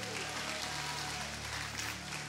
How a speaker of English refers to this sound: Give them a great big hand clap. Give Jesus a great big hand clap.